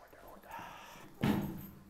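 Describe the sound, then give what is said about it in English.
A door opens with a sudden, fairly loud burst of rushing, creaking noise partway through, following a stretch of murky background rumble and faint voice-like sound. “Oh, it's just a door.”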